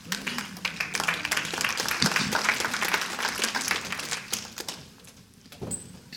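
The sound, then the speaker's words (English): An audience claps steadily for several seconds, a dense patter of many hands that thins out and fades toward the end, with a few scattered claps lingering. “Now, if that was clapping the truth, it was a pretty pathetic effort.”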